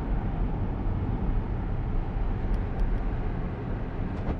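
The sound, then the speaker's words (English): Steady road noise of a car driving by, a continuous low rumble of engine and tires that stays even throughout with no voices. “I just saw a car drive by me, and I see the cars in front of me.”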